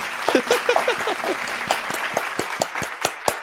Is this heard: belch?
no